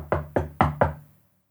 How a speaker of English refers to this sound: And he does a knock on the door.